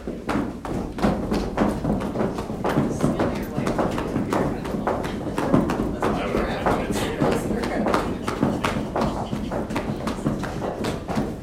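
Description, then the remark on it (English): Many people stomp their right feet hard on a floor during a guided exercise, a rapid, uneven barrage of heavy thuds that continues steadily throughout, loud, with voices faintly mixed in beneath the pounding. “Now we are going to stomp our feet, so you're gonna take and stomp your right foot.”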